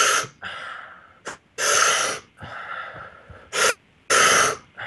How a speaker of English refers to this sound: I don't know if you guys can hear my breathing.